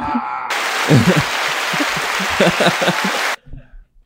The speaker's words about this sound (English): What was that? That was applause.